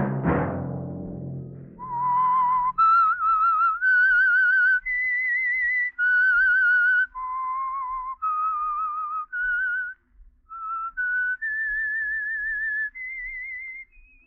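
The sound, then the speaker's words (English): A solo whistled program theme melody rises and falls in clear sustained notes with a slight vibrato, playing a slow, eerie tune alone after a brief low rumble at the start. “Let that whistle be your signal for the Signal Oil program, The Whistler, each Monday at 9”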